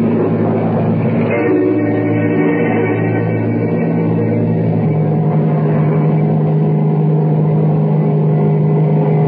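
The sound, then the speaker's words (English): A loud, steady airplane engine drones throughout, a dense low roar with humming tonal layers that hold level, briefly swelling near the start, with no voices, as the plane climbs through air pockets at about 7,000. “We're just hitting a few air pockets. When we get enough altitude, it'll be smooth sailing.”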